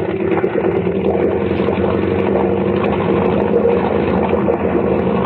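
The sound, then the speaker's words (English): A motorboat engine runs hard at speed, turning up to 3,000 and throwing a big wake: a loud, steady droning roar with a low throbbing hum and a rushing wash of noise that never lets up. “Look behind us. We're throwing a wake like a destroyer.”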